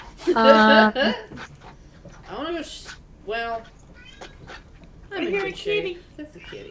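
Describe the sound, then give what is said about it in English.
A person imitates a cat, letting out several drawn-out, whiny meows with rising and falling pitch, spaced over a few seconds. The voice is fairly loud, with short pauses between calls. “I'm a kitty. That's a kitty.”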